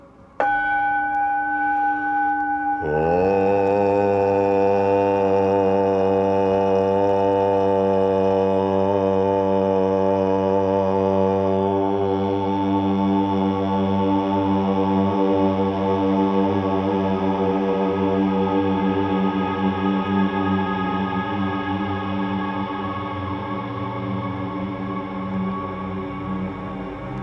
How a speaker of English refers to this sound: Chief of these is the syllable Om or Aum, called the pranava or the sound of God, because it involves the whole range of the voice from the back of the throat to the lips. Take the tone from the gong and hum it with me.